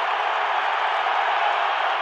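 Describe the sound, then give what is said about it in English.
A big arena crowd, on its feet during a free throw, roars steadily, a dense, loud wash of cheering and noise that holds at the same level for the whole stretch without any break. “Joe Ingles is egging the crowd on. And the place is on their feet for Chick-fil-A”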